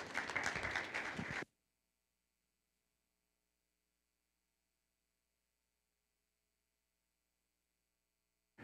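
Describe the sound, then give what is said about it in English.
A loud burst of audience applause welcoming Pastor Mike Kittelson after a prayer, many hands clapping densely, lasts about a second and a half before cutting off into long silence; a short swell of sound returns at the very end. “Would you please give a round of applause and welcome Pastor Mike Kittelson.”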